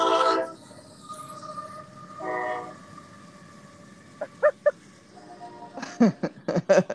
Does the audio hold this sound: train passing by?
yes